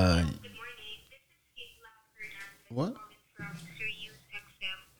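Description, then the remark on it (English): A mobile phone rings with a melodic ringtone, short bright tonal phrases separated by brief pauses, fairly loud. “Bro, you didn't hear your phone ringing?”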